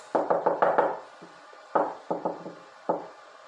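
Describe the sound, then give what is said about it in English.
A quick burst of about five firm knocks on a wooden door, a short pause, then several more spaced-out raps. The knocks are fairly loud, with no voices. A boy is knocking on her door to ask her something. “Okay, I'll go knock on her door.”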